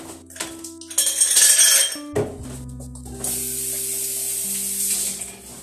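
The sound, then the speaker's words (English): Ice cubes clatter and clink into a glass in a short rattling burst, followed by a steady fizzing hiss like a drink being poured over them. “If you do, I'll just dump it into my glass.”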